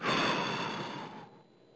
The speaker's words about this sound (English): Now take a deep breath, as deep as is comfortable, and hold it for the count of 2. 1, 2, and breathe out and make noise when you're breathing it out.